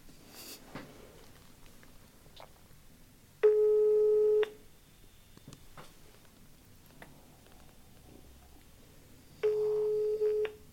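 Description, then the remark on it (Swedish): A phone's ringback tone from an outgoing call sounds twice, each a steady electronic burr lasting about a second, separated by a few seconds of near silence with faint ticking and background noise. “Alltså, ska jag ringa till Johan?”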